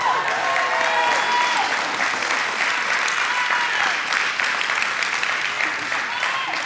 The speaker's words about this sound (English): You be glad. Raise your hands. Raise your voice. Shout. Clap. Have a little fun.